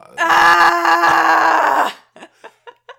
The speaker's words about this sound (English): Okay. Yeah, I said we are, A-R-E, not we are, we're screaming. It was not a prompt for you to kind of howl at the mic.